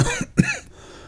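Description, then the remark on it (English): A couple of short, hoarse coughs, the second one sharper, then quiet breathing fading out. No talking. “I coughed as I nodded.”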